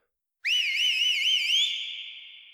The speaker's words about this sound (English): A loud whistle echoed off the canyons around them.